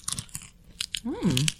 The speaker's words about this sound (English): They have a weird, like, airy crunch without tasting stale, though. I think everything that is baked right, makes me feel this way.